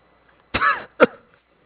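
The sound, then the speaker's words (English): Two harsh coughs with no talking, from a person in a hospital who has been coughing blood: a longer, raspy first cough followed a moment later by a shorter, sharper one, then quiet. “I've been coughing a bit of blood since then.”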